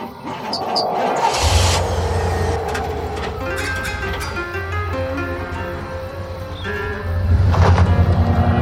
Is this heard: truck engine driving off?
yes